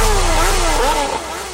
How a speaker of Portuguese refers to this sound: Mais de 40 motos acelerando a radial. Mais de 40 motos acelerando a marginal.